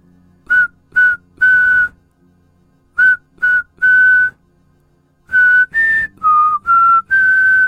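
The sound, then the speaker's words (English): A man riding a bicycle whistles the Jingle Bells melody on a hot, humid August evening in a small village in Switzerland: two short notes and a held one, repeated, then a run of five notes. There is no talking and only quiet background between phrases. “The thing I feared was the Whistler was actually some dude whistling jingle bells on a hot and humid August evening in a little village in Switzerland.”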